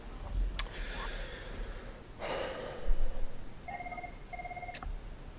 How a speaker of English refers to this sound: I can hear my phone ringing randomly.